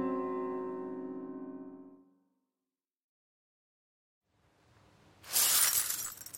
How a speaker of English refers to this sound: I smacked into it. It smacked onto the floor and... 7 years bad luck, is it?